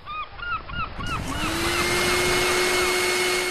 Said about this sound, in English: But what about a purpose-built floating vacuum cleaner?